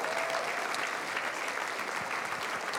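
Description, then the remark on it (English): An audience claps steadily as a man comes up to join the speaker, many hands blending into a dense, even wash of applause that holds at a constant level throughout, with no voices standing out above it. “Give him a big hand clap as he joins me.”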